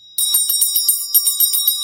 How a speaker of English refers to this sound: Let me just ding the bell.